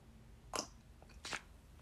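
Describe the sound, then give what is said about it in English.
Two short, slurping sips of hot Throat Coat tea, about a second apart, with quiet pauses between them and no talking. “And let me take a sip of my throat coat tea before I make my final four pick and mull it over one last time.”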